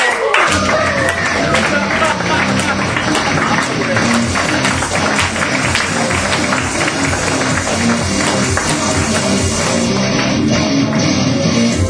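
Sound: audience applause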